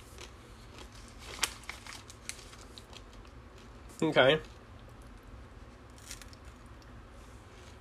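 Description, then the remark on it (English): Crunching of almond M&M's candies, a few sharp crackly bites with one loud, grinding burst midway, and a brief spoken word. “Interesting. Very crunchy.”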